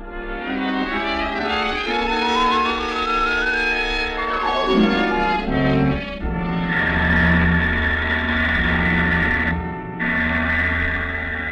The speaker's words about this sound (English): It was late. The steamer dock almost deserted when the big car pulled up near the gangplank.